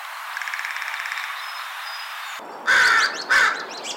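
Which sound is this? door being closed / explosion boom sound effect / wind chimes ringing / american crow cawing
american crow cawing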